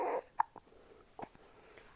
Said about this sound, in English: Uh-oh, you just have hiccups.